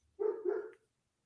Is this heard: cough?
no